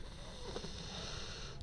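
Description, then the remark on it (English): A man's low, rumbling snoring, steady and fairly quiet, with a raspy texture that continues throughout the short stretch and no talking. “That's him snoring, by the way.”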